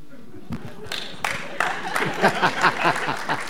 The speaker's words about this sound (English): There was a blend of claps between men and women at certain times, depending on the answer.